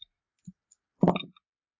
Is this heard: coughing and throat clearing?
no